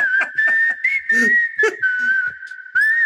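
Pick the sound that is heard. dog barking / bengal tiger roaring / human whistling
human whistling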